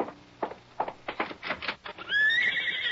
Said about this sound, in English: Why, yes, that's a horse out there. Oh, maybe they're back.